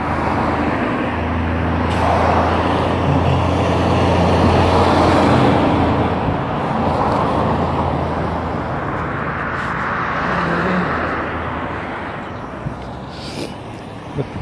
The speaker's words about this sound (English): there's this like cars passing by, and I don't like walking in front of them, so I let them go by first.